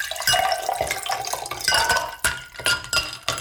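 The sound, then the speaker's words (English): Water splashes and trickles into a glass, with bright clinks and a few sharp taps of glass as the pouring continues for a few seconds. “So we're going to start you off by keeping you well hydrated with some water.”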